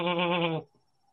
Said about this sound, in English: You kind of hear the soft bleating of a goat every now and then.